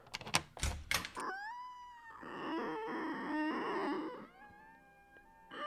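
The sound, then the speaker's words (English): A few sharp knocks and clunks of a latch, then a door swings open on a long, warbling hinge creak that rises and wavers for several seconds before a final click. “Okay, let me get this door here.”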